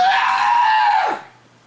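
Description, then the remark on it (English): A voice imitates a loud, raspy, gurgling, bloodcurdling scream, one sustained shriek held for about a second before it drops sharply and cuts off, leaving quiet. “That's a gurgly scream.”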